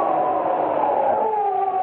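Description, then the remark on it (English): A dog howls somewhere far down the road, within a few minutes of midnight, as a carriage sweeps into a dark mountain pass. It is one long, unbroken wail that holds a steady, mournful pitch and sags slightly lower toward the end. It sounds fairly loud, with no talking over it. “And then a dog began to howl somewhere far down the road.”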